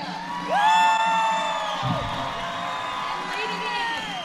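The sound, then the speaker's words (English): A large crowd at a ceremony in the Silver Dome arena cheers loudly as Team Queensland comes in, with high, rising whoops and shouts layered over a steady roar that swells early and carries on for several seconds. “Ah, huge cheers.”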